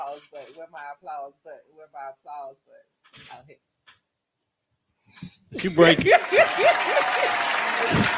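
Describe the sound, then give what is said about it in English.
A voice talks briefly, then after a pause a canned applause effect from a soundboard applause button bursts in loudly: dense, steady clapping with whoops and cheers, continuing to the end. “Where my applause button?”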